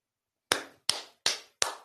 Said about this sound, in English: I got to give her a hand clap.